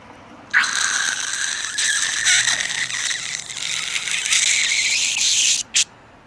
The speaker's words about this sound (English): Now, we must cut through the glass of this window.